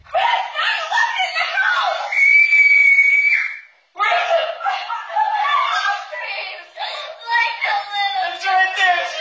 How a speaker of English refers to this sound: The house, maybe not so much. The car, I'd probably be screaming along with those girls.